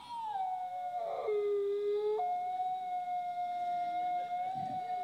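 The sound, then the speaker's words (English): Wolves howl in long, sustained, overlapping tones, one voice dropping in pitch while another holds a steady high note, carrying clearly over a quiet outdoor background. “And then the wolves are out there, and they are vocalizing, trying to communicate.”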